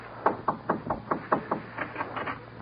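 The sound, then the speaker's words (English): Rapid knocking on a door, knocked a second time, about a dozen quick, evenly spaced raps in a steady rhythm, moderately loud, with no voices. “Knock again.”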